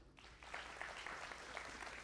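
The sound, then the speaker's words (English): An audience at a service claps steadily for about two seconds as the speaker takes a sip of water, a dense, crackling patter of many hands starting abruptly and holding at an even, moderate level with no talking. “If I would, whenever I say something and then I take a sip of water, if you would clap, it actually makes it go by faster.”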